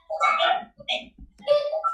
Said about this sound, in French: Ah, OK. Quelqu'un a un chien en arrière. Vous autres, il faut que vous mutez. S'il y a du bruit en arrière, il faut que tu te mutes.